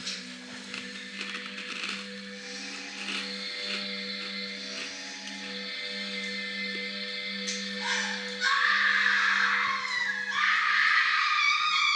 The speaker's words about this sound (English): Quality screaming.